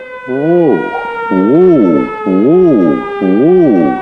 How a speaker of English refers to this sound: Play me out with a good old siren from the... What? We can't hear you. We can't hear you over the siren.